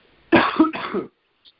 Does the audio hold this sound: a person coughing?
yes